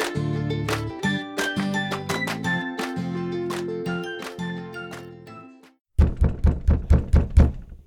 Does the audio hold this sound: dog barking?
no